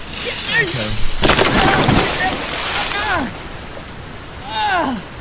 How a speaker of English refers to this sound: My soda exploded! Ah, Jesus!